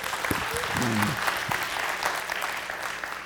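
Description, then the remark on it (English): A crowd claps steadily in a dense, sustained burst of applause welcoming a speaker, with a few brief voices rising over it near the start. “Give it up.”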